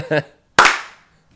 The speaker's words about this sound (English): So we have to clap. Both. Even before we perform.